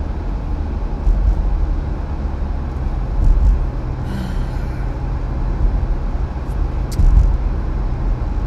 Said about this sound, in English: Okay, if this car comes right in front of me, okay.